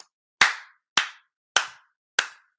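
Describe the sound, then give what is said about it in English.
Four sharp hand claps at a steady, unhurried pace, each a crisp, bright smack with a quick fade, loud and alone with no talking. “Is the clap coming through on my microphone?”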